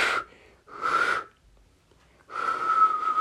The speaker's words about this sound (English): I'm trying to whistle right now in a specific way. You know that loud whistle people do?